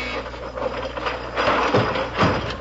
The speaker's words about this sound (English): Well, I'll be. The furniture went right back into the wall. Yeah, and your mother was in one of the chairs.